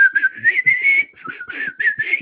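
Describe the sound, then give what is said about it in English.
A man whistles a short, lilting tune, the notes gliding and stepping in pitch with a brief pause midway, no talking. “makes a big show of blowing his lip through his lips, which quickly turns into him whistling a little tune.”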